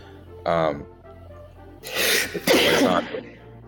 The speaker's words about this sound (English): You can't be coughing, bro. The thing going around, you can't be doing all that.